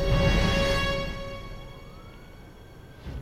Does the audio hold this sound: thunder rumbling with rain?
no